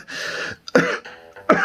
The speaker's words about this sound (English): persistent cough.